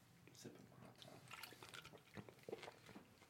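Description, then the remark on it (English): A drink is poured straight into someone's mouth: a few seconds of irregular wet splashing and gurgling, with sharper liquid bursts near the end, fairly loud over faint background murmur. “Let me waterfall that shit, bro.”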